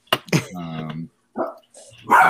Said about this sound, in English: dog's trying to take over the podcast right now.